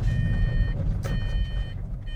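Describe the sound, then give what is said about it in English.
A steady electronic seatbelt warning chime beeps repeatedly inside a car because one occupant is unbuckled, sounding over a low rumbling engine hum with no one speaking, as three people drive about an hour from Melbourne to the Werribee Treatment Plant at 6 a.m. on a Sunday. “Which seatbelt is it? Oh, it's me.”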